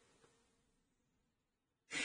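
After a stretch of near-silence, one sharp, loud burst of breath hits the microphone at the very end, brief and breathy like a quick exhale or sniff.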